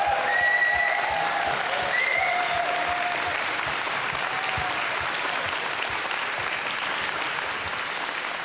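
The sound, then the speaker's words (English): Sustained audience applause at Queen's Park Baptist Church welcoming a guest speaker, a dense wash of many hands clapping steadily for several seconds, loud and continuous with a few faint whistles or cheers rising briefly above it. “So maybe we can just express that to you.”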